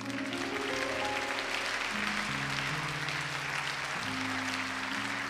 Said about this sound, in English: In Jesus' name, let's clap to the Lord.